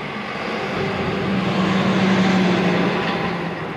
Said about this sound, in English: There's a loud car coming, of course.